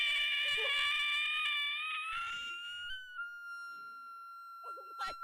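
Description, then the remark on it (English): A voice imitates a screaming glow frog with a shrill, piercing squeal held for a few seconds, then thinning into a steady, whistle-like tone before cutting off. Fairly loud, with no talking. “What are the screaming glow frogs sound?”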